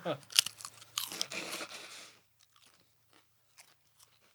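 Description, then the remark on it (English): A loud, sharp crunch as the middle of a giant Rap Snacks honey jalapeno potato chip is bitten, followed by about two seconds of dense, crackling chewing, then a few faint, scattered crackles and mouth sounds. “I'm going to take a bite out of this giant middle of the potato chip.”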